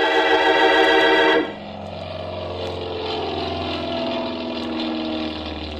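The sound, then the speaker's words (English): A propeller airplane engine at San Mateo Airport on a fine afternoon, with planes taking off and landing, roars loudly, then abruptly drops to a steady, lower droning hum that continues evenly with no one speaking. “It was a nice afternoon, so I stood watching some of the planes take off and land.”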